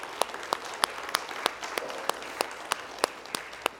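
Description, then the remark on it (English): An audience claps their hands for God after a prayer, with sharp, evenly spaced claps about three per second standing out over a steady wash of scattered applause. No one speaks. “Can we give Him another hand clap together, please?”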